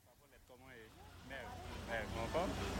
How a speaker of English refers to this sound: So we're just going to wait for a second, let traffic pass, and now we can cross the road